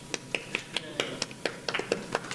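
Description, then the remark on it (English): Quick, steady clapping, about a dozen sharp claps at a brisk even pace, with a faint murmur of voices underneath. “Clapping. Clapping. I want one more.”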